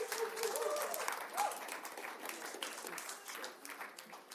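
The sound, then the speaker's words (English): An audience claps steadily for a panel being invited up, a dense wash of many hands that stays strong at first and slowly thins toward the end, with faint voices mixed in. “Let's give them a real round of applause.”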